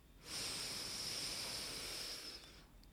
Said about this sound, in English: Speaking of deep breathing, why don't we just do one together? Take a big breath in through the nose.